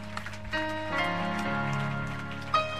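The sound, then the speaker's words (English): An audience claps unto the Lord in a steady, dense patter of hands, blended with sustained keyboard-like musical tones underneath, with a sharper burst of claps near the end. “I think if I clap it, you have to clap better unto the Lord.”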